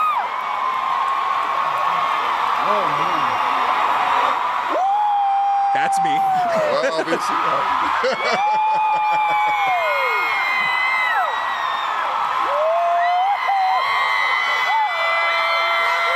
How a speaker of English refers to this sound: I'm going to put the volume all the way up. Audio listeners or headphone listeners, just be careful. But I'm just going to let this play out because then I have an even better clip right here. So this is the crowd just going crazy, right?